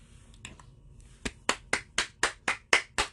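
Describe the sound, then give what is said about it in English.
A lone person claps in a steady, even rhythm, about eight crisp, sharp claps after a couple of faint taps, with no voices. “I applaud you, sir.”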